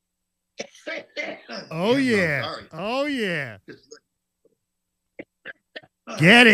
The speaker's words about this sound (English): A man hasn't coughed like that since back in the day, yo. Been smoking since I was two.